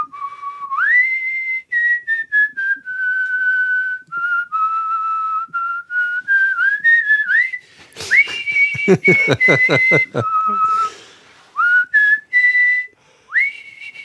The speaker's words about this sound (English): whistling bit. The Star Trek bit.